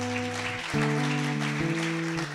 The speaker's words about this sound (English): Thank you, Jesus. Give God a big round of applause.